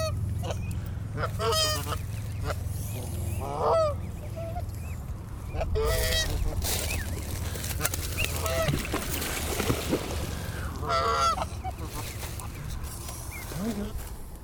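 Adult geese honk loudly and repeatedly as they charge, their harsh calls overlapping in irregular bursts over a steady low rumble.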